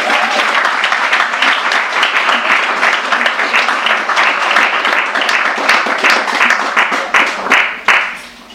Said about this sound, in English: Let's please give her a warm round of applause.